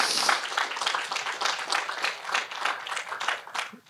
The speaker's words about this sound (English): I've met a few new people, so for the regulars, would you welcome those new visitors today with a round of applause?